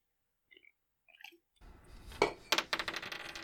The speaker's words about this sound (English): You watch the Kender walk over. She opens up the desk drawer. You see her flinging steel coins out. Oh, there they are.